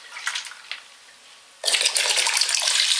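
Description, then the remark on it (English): A few soft splashy ticks, then a sudden loud burst of continuous gurgling and rushing as water is pulled into a pipe with its bottom submerged, drawn in by someone inhaling through it, lasting to the end. “So as you're inhaling, you'll bring water in it.”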